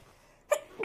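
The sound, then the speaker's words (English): A single sudden sneeze bursts out after a quiet moment, short, followed by a brief breathy sound as it trails off. “Bless you.”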